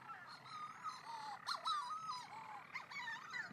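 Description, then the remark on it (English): Shearwaters circling above and around out over the sea at Skellig Michael in the North Atlantic, calling to mates that nest in burrows: a faint, overlapping chorus of wavering, warbling cries that rise and fall in pitch, with brief sharper notes popping out of the steady layered calling, and no voices. “I guess these birds are circling far and wide above us and around us, and off out to sea and back, and I think they're calling and trying to tune in to the response of their mate, which is the shearwaters nest in burrows”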